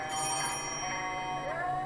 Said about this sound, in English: Damn phone is ringing. Get your ass out here. Pick it up for fuck's sake.